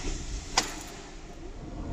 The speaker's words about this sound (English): Do you enjoy the slamming of the trolley man in the background? Good. Yeah, it really, it's this underground car park.